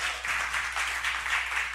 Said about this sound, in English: Oh, I'm preaching better than you're clapping, but that's okay. That's okay. Some of you don't want to clap. It's too painful. Right?